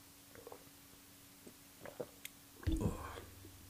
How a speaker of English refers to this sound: Oh, I need to have a sip of this coffee.